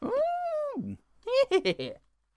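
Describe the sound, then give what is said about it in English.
A person imitates a dog: a long, drawn-out howling yowl, a brief pause, then a quick burst of about four short, loud barks. “What a mad dog.”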